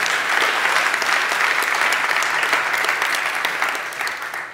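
A large church audience claps in steady, sustained applause for the team that helped launch Books for Life, many hands blending into a dense patter that holds for several seconds before easing slightly at the end. No one speaks.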